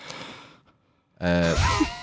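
An exaggerated yawn: a breathy inhale, a brief pause, then a loud voiced groan that slides in pitch as it stretches out. No talking.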